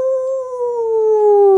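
A single wolf howl, one long sustained tone that slowly sinks in pitch, loud and close with no voices around it.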